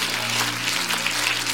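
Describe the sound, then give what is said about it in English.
A large church audience claps steadily to the Lord, a dense wash of many hands applauding at once, with a low hum underneath and no clear voices. “Come on, clap your hands, all your people.”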